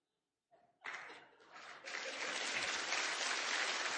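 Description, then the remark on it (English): A crowd in a church, once named Christ Community Church, breaks into applause after a brief pause, the clapping quickly swelling into a loud, dense, steady roar of many hands that holds to the end. “And that's an applause line in this once-named Christ Community Church.”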